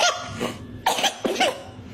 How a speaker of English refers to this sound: That's a fart. That might be real.